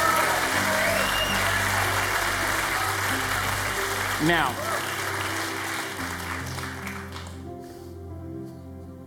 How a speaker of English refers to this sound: Can you give the Lord a shout, a hand clap?